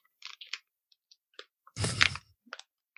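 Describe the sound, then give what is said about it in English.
A plastic bottle crinkles and crackles as air is sucked out of it while drinking, scattered sharp ticks building to one loud, dense crunching burst before a few final pops. No one speaks. “Oh, I always suck all the air out of it while I'm drinking it.”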